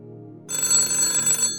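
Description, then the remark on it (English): A telephone bell rings once, loud, a bright sustained metallic trill lasting about a second, preceded by a quiet low hum. “The phone would ring, and I'd just feel who was on the other end.”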